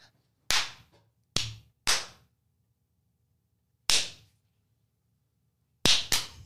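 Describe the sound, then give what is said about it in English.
Six sharp hand claps at an uneven pace, including a quick pair at the end, each with a short bright ring-off. No talking, just a low steady hum between claps. “Clappy claps.”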